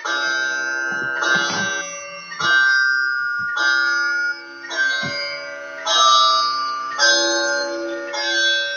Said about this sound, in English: It's after dinner now, and as the clock in the hall strikes 8.